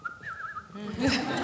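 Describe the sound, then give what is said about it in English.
A person whistles a short, wavering, angry tune that lasts under a second, followed by a burst of breathy, noisy vocal sound. “An angry whistle.”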